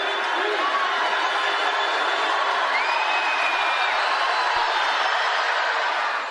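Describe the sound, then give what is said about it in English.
A basketball arena crowd at a BYU versus Utah State game roars steadily for several seconds as McKay Cannon shoots two free throws, a dense wall of voices with scattered shouts and a few high whistles, loud and unbroken throughout. “That quiets the crowd.”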